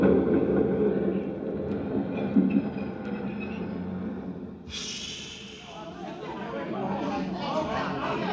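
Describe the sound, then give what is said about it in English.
An underground train rumbles loudly and steadily through the 59th Street subway station, then brakes hiss and squeal sharply about halfway through, with a murmur of crowd voices in the background. “Joe Candle worked in the change booth in the subway station at 59th Street.”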